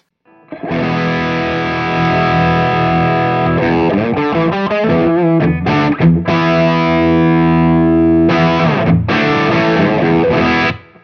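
An electric guitar plays sustained chords and a few single-note runs through a Tube Screamer overdrive pedal with tone at noon and drive all the way down, the tone slightly dark and gritty, steady with brief pauses between phrases.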